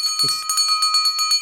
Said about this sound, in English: Oh, just realised, forgot to tell you what the bell means